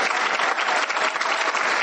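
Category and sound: crowd, round of applause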